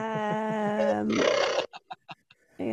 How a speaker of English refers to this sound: you hear like a screech, like a squeal somewhere, like a pitch shifted elephant noise.